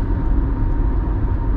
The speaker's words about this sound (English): I'm on the freeway and some guy just buzzed right past me.